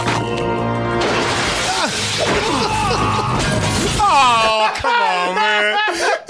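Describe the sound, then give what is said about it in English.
Glass smashes in a loud, cluttered crash in a movie scene as it is broken with a security guard's face, tangled with strained groaning voices, then drawn-out vocal cries take over toward the end. “I know, but just pull through slow, the glass shatters, and then hit him again”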